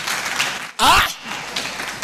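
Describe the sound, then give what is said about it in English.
A church audience claps during a sermon in a steady, dense patter that fills the whole clip, briefly interrupted by a loud voice calling out before the clapping carries on. “Can you clap a little?”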